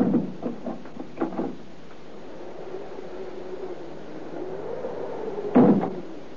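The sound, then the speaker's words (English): A few sharp metallic clicks as a little old man in a cloak turns a key in a door lock, then a long, low drawn-out creak as he presses a door panel and the door swings slowly open, ending with a soft thud. “He came to the door, bowed before it, felt in a pocket, produced a key, and turned it in the lock. After a moment, he applied pressure to one of the door panels, and the door opened, and he went in.”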